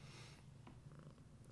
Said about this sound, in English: My cat is being super lovey because I was, again, gone all day. Mm-hmm. Oh, I heard a little bit of the purring there. Yeah, I mean, you saw Cappuccino earlier.